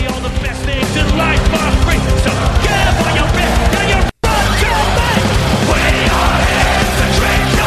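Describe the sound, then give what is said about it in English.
A live pirate-themed band, recorded live in Tilburg, plays a loud, rowdy drinking song with gang-style shouted singing over driving instruments including guitar, steady throughout apart from a split-second dropout midway. “They just drink and sing like pirates.”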